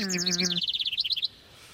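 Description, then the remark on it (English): Small birds chirp in a quick burst: a brief buzzy call opens, then about a dozen rapid high tweets tumble out before stopping abruptly. “Oh, poor little birds.”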